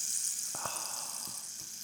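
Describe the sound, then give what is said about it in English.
A rain stick gives off a steady, bright, high-pitched rush of trickling beads, with a few faint soft clicks scattered through the continuous hiss. No voices are heard. “It's a rain stick.”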